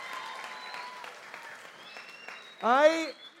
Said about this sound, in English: I got to tell you, it's really nice of you to clap for that, but I didn't feel great about that level of exposure.